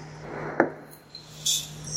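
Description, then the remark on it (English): Dice rolled for practice on a table: one sharp clack followed by a few lighter, scattered ticks and a brief bright rattle, fairly quiet over a steady low hum, with no one talking. “so I'm just rolling for practice”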